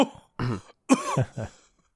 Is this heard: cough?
yes